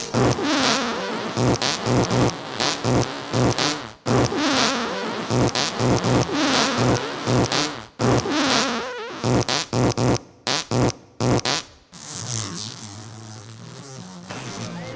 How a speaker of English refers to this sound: He drinks beer. Sits around all day, farts.